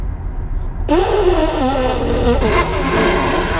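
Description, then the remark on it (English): Someone imitates an elephant's trumpet with a loud, brassy, buzzing blast of voice that wavers in pitch and holds for nearly three seconds, bursting in abruptly after a low rumble. “This episode is just noises. That was an elephant.”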